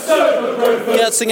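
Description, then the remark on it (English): A large football crowd sings together in a stadium near the end of the match, a loud, sustained wash of massed voices holding a steady chant with a few brief sharper shouts rising above it. “As the crowd are singing here, back end of the game.”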